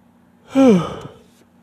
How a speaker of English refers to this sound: Excuse me, y'all. I'm yawning, I'm getting tired, but I'm trying to talk about this podcast. I mean, this topic. All of a sudden, I'm starting to be yawning and getting a little sleepy when I'm talking about it.